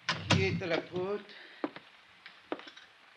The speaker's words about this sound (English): I stepped inside and closed the door.